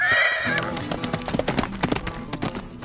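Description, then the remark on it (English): A horse, Tornado, gives a brief, high whinny, then gallops along the wall of a mansion with Zorro's cloak fastened to its saddle and flapping behind, its hooves pounding in a quick, uneven rhythm of sharp thuds that continue to the end. “Tornado raced along the wall of the mansion, Zorro's cloak flapping behind him.”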